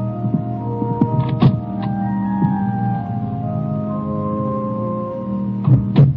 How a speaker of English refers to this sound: I don't turn around when the door clicks softly shut behind me.